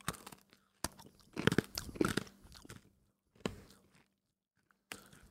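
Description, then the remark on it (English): Crisp, dry crunching of hard dog biscuits being bitten and chewed: sharp bites, a dense flurry of crunchy chewing, then a few more scattered crunches, with no talking. “It's just lacking sugar. Dogs will love it. It's delicious. It's like a biscuit.”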